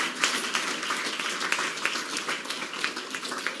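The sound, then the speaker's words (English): An audience at a morning church service applauds the Lord steadily, dozens of overlapping hand claps merging into a dense, continuous roar of clapping with no one speaking. “Come on, just give the Lord applause this morning.”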